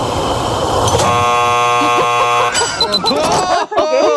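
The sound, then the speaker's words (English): A loud, flat game show buzzer blares steadily for about a second and a half, then cuts off as voices and studio chatter carry on. “At the buzzer.”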